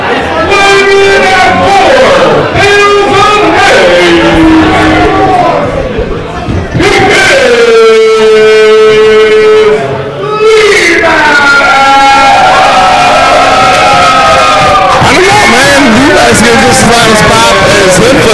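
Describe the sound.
A loud live crowd at a match roars and shouts throughout, with sustained yells and chanting voices swelling and overlapping, a brief dip near the middle before the cheering surges back.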